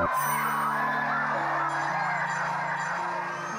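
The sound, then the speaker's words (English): Loud, overlapping whoops and shouts from men plunging into the freezing sea at the Christmas Day swim at the pier in Skull, West Cork, sustained and excited, with several voices crying out together. “The nerve-stealing countdown, the shrieking children and the pained whooping of the men as they plunge into the freeze.”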